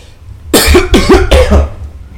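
cough

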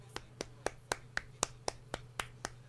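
clapping

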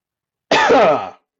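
sneeze or cough

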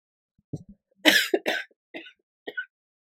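coughing

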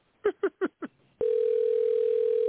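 telephone ringing

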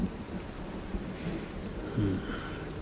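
crack of thunder

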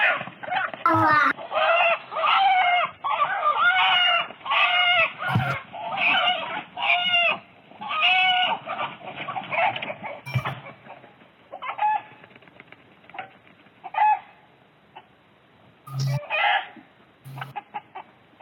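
chicken squawking

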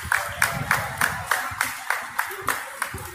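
people clapping

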